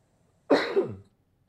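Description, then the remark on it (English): A single fairly loud cough with a raspy, throaty quality lasting about half a second, standing alone against near silence with no talking. “Let me pause for a second so I can cut that cough out.”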